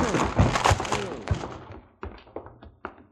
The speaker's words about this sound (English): Come on, help me bust this door down. Only too glad to oblige, Counselor. All right. One. Two. Three.